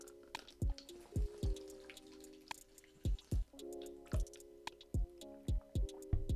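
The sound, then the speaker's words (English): Loud gulps of water, a steady series of wet swallowing and slurping sounds about every half second, right up against the microphone with no talking. “I need some water”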